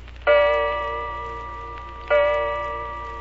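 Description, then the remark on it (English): Two resonant strikes of an old grandfather clock in a hall striking the hour, a couple of seconds apart, each ringing out loudly and fading slowly over a low steady hum, with no voices. “You hear the old grandfather clock in the hall strike the hour.”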